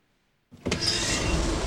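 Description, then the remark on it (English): A door slides shut as Grant rushes out, with a loud, steady mechanical whir and rumble that starts abruptly after a moment of silence, with a brief high whine near the start and no voices. “As the door closes, Lex clutches Tim's hand.”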